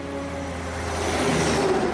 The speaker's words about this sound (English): Oh, something's gotta be done about those trucks.